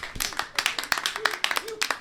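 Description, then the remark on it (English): Brief audience applause: a scattering of sharp, irregular hand claps, fairly loud, with a faint voice murmuring underneath toward the end. “Record that applause.”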